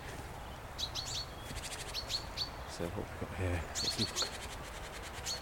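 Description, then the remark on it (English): High, thin calls and rapid chattering notes from a little party of small birds, mostly tits such as blue tits and grey tits, in riverside trees, repeated in short bursts while a man speaks briefly in the middle. “Some blue tits, grey tits, grey tits, and blue tits. Yes, a little party of small birds, mostly tits, and there's some nests.”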